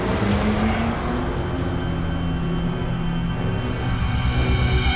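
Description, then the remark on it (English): A car engine hums loud with a steady low rumble, its tone rising slightly as the vehicle quickly pulls away. No voices are heard. “Carruth quickly drove off while Kennedy and Watkins followed the rest of the plan.”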